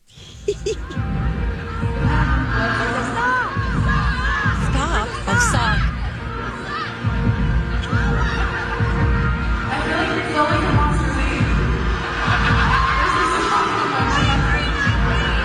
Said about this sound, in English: The audio's a little bad too, so you just kind of have to listen. But try to listen to what the audience is shouting at her.